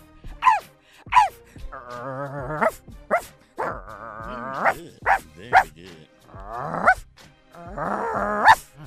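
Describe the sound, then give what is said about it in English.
A person imitates a dog, letting out a loud string of sharp yelping barks mixed with a few drawn-out whining howls, roughly a dozen calls with no other talking. “Do a dog”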